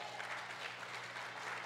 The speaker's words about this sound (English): Clap for that. Dale un aplauso a Dios por eso.